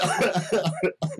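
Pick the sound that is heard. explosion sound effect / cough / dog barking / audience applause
cough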